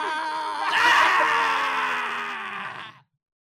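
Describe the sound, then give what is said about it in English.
Two voices scream together in a long, loud wail that swells after a moment, holds for about three seconds, then cuts off abruptly into silence. “We're both just screaming.”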